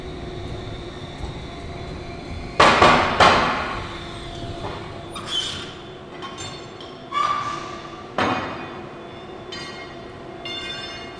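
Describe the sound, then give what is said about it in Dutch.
Heavy metallic clanks and scraping as a man manually throws tram points with a hand switch iron, several sharp impacts with ringing resonance over a steady rail-yard hum. “Was het geluid van het wisselijzer.”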